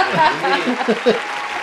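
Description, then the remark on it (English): A short, thin patter of clapping from a small group congratulating someone on a new job lasts under two seconds, with light chuckles and murmuring voices mixed in underneath. “Another round of applause. Pathetic round of applause, but thank you.”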